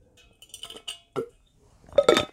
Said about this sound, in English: But let me drink some water.